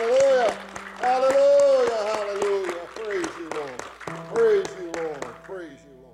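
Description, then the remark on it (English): An audience claps and applauds in quick, scattered bursts as a clap offering of praise to the Lord, mostly under a loud voice shouting or chanting over the top. “Give the Lord a clap offering of praise.”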